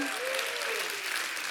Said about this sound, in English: Somebody, anybody, give him a hand clap.